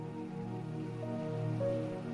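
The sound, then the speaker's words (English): Steady rain falls continuously in a park in England on a spring afternoon, a soft even patter with no voices, accompanied by a faint low tonal hum in the background. “Tonight, we'll be visiting a park in my home country of England on a rainy spring afternoon.”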